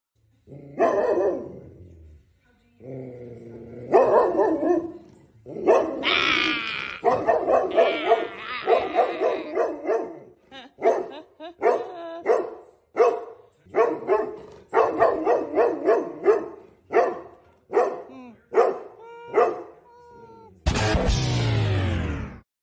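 A dog barks and growls, starting with drawn-out whiny growls, then launching into a rapid, steady series of sharp, loud barks and yips, ending with a harsh noisy burst.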